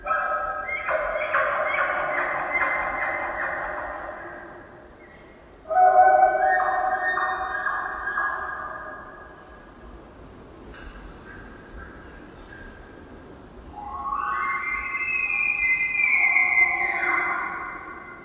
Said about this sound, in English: Another bull, deep beyond the conifers, cries out. An elk bugle. This distinct rutting call gets higher and ends with a series of grunts.